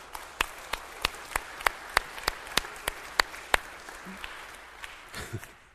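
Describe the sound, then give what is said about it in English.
A church audience applauds their Birmingham campus with sparse, steady claps in an even rhythm, about three per second, that thin out and fade after a few seconds. No one speaks. “I notice only the ones of you who came to Bible study are applauding.”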